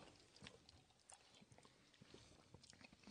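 Quiet mouth sounds of someone sipping bourbon: soft slurps, lip smacks and small wet clicks scattered over a few seconds, with no talking.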